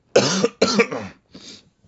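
A close, harsh coughing fit: two loud, forceful coughs in quick succession, followed by a couple of weaker, raspier ones that trail off. No talking.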